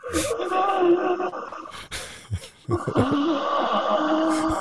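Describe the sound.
A voice imitates slow turtle breathing, drawing out long, low, groaning exhales broken by a few short breathy gasps, steady and fairly loud, with no words spoken.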